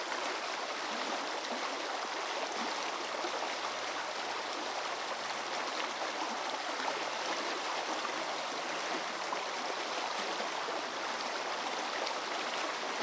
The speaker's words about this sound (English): While making these recordings, I was amazed to discover just how rich and complex the soundscape is under the water surface. You can hear the sound of minnows feeding